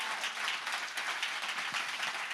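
An audience claps together during a sermon in a dense, steady burst of applause lasting a couple of seconds. Many hands blend into a continuous crackling wash, with no one speaking over it.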